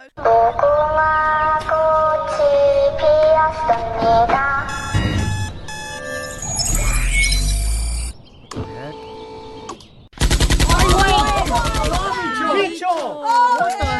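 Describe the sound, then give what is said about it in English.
A Squid Game Narcos novelty alarm clock plays a loud, constantly shifting medley of electronic tones, rising sweeps and rapid rattling bursts like gunfire. It runs nearly nonstop, with only a brief drop partway through. “Okay, here's the Squid Game Narcos alarm clock.”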